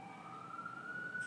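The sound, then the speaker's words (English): A wailing emergency siren holds a steady high tone outdoors in the background, with a low rumble of traffic beneath it and no one speaking. “As the sirens go on in the background that I hear out of my other ear that's not covered.”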